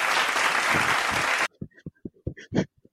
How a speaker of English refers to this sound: You know, bringing up a good point, man. So you get a round of applause for that, man.